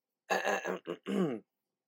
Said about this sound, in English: Just let me clear my throat. Oh, hopefully I don't get copyrighted on that.